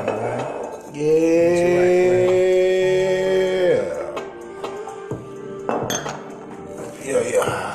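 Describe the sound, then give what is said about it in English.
A drink of Cali Moco, red wine mixed with wild cherry Pepsi, is poured into a glass in one steady stream lasting a few seconds, its ringing tone rising slightly as it fills, followed by scattered glassy clinks and murmured voices. “Hold on. I need something to pour. Pour me up.”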